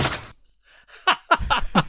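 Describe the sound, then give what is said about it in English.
In a film scene, a woman smashes a pumpkin onto a kitchen counter: a loud, broad crash, a short pause, then four heavy, uneven thuds with a brief ringing edge, and no talking. “And what is it that she smashes onto the kitchen counter?”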